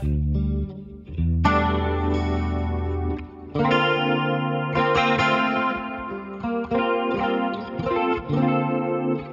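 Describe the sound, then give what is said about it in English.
A Hammond-style synth organ patch plays sustained chords with a swirling chorus-like shimmer, then shifts into a busier, rhythmic run of stabbed chords and fills, loud and steady, with no one talking. “And we've got my kind of fake … organ patch.”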